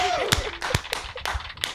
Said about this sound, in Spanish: Sí, señor. Un aplauso fuerte.